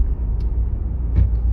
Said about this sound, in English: Oh, there's a truck again. Okay, we should be fine.